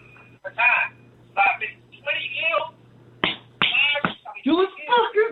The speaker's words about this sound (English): He's happy too. You hear him over there clapping?